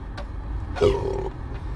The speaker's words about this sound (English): Excuse me, I'm eating. So if you hear a lot of burps, that's my, you know, that's the hangover food.